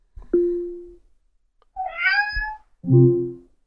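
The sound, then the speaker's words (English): Three distinct cat meows in a row played by an Alexa smart speaker, separated by short pauses, each fairly loud, the middle one higher and more drawn out, with no talking. “Meow.”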